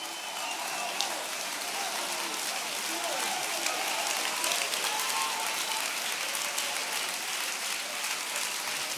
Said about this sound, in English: Come on, clap a little louder.